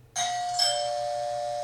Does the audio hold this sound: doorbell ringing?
yes